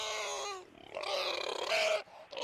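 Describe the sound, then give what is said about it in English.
A horse gives a rough, strained cry: a short tonal whinny first, then a longer raspy, wheezing squeal that breaks off abruptly, sounding hoarse and unwell. “This horse does not sound healthy.”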